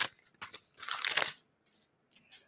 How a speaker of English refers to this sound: Ladies and gentlemen, if you are listening on a podcast streaming service, I had a piece of paper with some notes on it, and I ripped it in half.